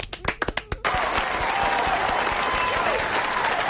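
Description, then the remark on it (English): An audience bursts into applause for a quiz participant before his answers are revealed: a few scattered, sharp claps at first, then a dense, sustained wash of clapping from many hands that holds steady at full strength to the end. “Let's applaud him first, and then I'll tell you which of his answers were correct.”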